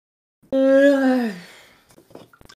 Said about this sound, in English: I was talking about the yawning.